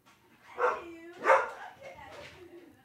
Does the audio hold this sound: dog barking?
yes